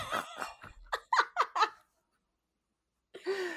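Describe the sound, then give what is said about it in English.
A voice imitates a monster sniffing: a run of quick, raspy, breathy snorts in a rhythmic burst, then a short silence before someone starts talking. “That was my Nazgul sniffing.”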